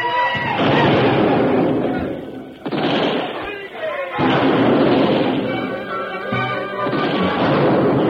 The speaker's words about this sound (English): Soldiers are opening up with all the cannon. That should defeat those Indians. And mortar fire as well.